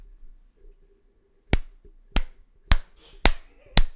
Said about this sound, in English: Okay, whoever's gonna clap, clap now.